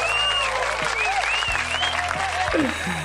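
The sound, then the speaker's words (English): A crowd applauds loudly and steadily, a dense wash of clapping that fills the whole stretch without letting up, with a few thin whistle-like tones rising above it. “Let's give Jason Love a round of applause.”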